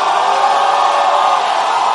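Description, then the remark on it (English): A dense, sustained roar of many voices shouting and whooping together, loud and steady throughout with no pauses, like a large crowd in full cry. “You are shouting too much.”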